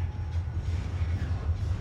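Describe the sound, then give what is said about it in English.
A train rumbles past with a steady, heavy low roar and a faint rattling hiss on top, holding constant loudness throughout the short stretch, with no voices heard. “Oh, here comes the train again.”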